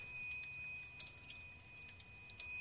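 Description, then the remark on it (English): An old wall clock in a shop chimes seven o'clock, several soft metallic strikes whose bright ringing tones hang and overlap, fairly quiet, with no voices. “At length, the old clock on the wall strained itself, chiming the hour of 7, the time of closing up the shop.”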